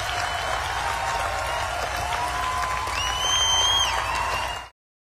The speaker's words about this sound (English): I think I was applauding instead of tweeting at that very moment.